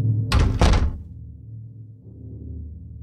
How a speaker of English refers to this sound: Close the door.